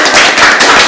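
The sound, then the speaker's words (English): A small group of students claps in a loose, uneven burst, the sharp hand claps overlapping into a steady crackle for about a second. Nobody speaks over it. “Was there a good bond between your class last year, the eighth graders last year, and you guys? Round of applause.”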